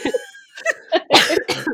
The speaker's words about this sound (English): cough, it makes me cough. I have the lungs of Edward Cullen. Dying of influenza, so it's not great.